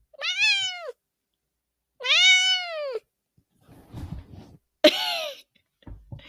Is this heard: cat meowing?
yes